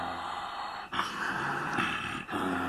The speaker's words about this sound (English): Lion was tired. He was sweating too. As soon as he laid down his head, he fell asleep. In no time at all, he was snoring loudly.